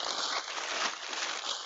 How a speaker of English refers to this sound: Wrapping paper. I'm still finding wrapping paper. We didn't even do that many gifts, y'all. I promise you. And I haven't done the, you know, put up everything. Look, the dog, he can't stand that noise.